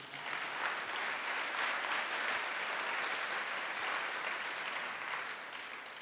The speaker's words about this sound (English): Clap for Jesus.